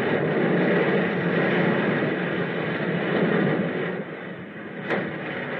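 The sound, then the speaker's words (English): A heavy, continuous roar of aircraft engines as planes dive to mark the new position of a submerged U-boat, loud and steady with a slight dip near the end and a brief sharp crack just before it closes. “Our planes dived to indicate the new position of the submerged U-boat.”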